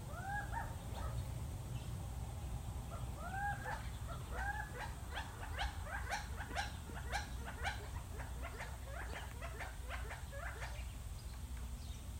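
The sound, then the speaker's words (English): Gambel's quail, a ground bird of the Southwest, calling: repeated nasal, upslurred notes, joined by a busy flurry of sharper chirps and clucks, steady against a low background rumble, with no talking. “All right, our fourth bird is a true favorite of the southwestern dwellers here in this area, the Gambel's quail.”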